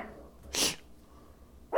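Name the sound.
dog barking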